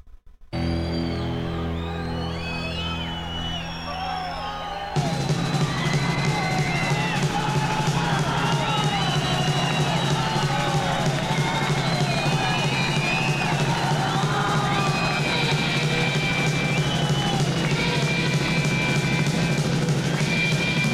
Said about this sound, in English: But before we kick into it, that crowd noise is actually some wild crowd noise from the … that … was also working on. So he just grabbed it from that project and put it over here.